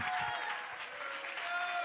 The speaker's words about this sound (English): Come on, brother, shake that sign. Come on, somebody clap your hands. Somebody shake your sign for Jesus this morning.